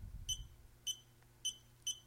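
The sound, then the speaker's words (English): Four short electronic beeps sound at an uneven, tapping pace as a number is dialed on a phone's keypad, clear over a quiet background with a low rumble at the start. “There's a pad, so you can dial it, and it makes these cute little beeping noises.”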